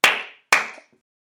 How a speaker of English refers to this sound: Clap once if you can hear me. Clap twice if you can hear me.